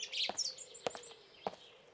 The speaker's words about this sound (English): Ah, that's the wise thrush. He sings each song twice over, lest you should think he never could recapture the first fine, careless rapture.